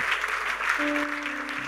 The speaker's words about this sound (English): Give Jesus a big clap of praise. Yes.